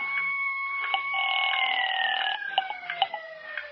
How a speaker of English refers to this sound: Siren. What kind? An ambulance siren? Well, maybe not. Listen carefully. Well, police cars have a deeper sound. Fire engines waver. No, it's an ambulance, all right.